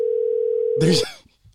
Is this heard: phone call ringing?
yes